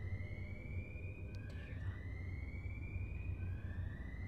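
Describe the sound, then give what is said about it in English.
An alarm siren wails in a steady, slowly rising high tone that glides upward again partway through, sounding over a constant low rumble with no one speaking. “Is that an alarm?”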